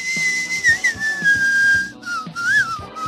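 Someone whistles a song melody, a clear, high tone that glides and bends between notes, pausing briefly partway through before carrying on, with a soft low murmur underneath.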